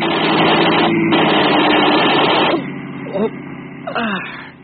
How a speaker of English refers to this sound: there's a prowl car coming.